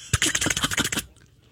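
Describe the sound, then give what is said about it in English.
A quick burst of typing on a computer keyboard, roughly ten crisp, closely spaced key clicks for about a second, fairly loud, then quiet. “Somebody had a keyboard and went, hey, watch what happens when I type this.”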